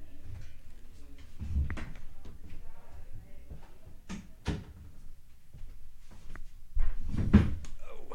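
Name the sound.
door being shut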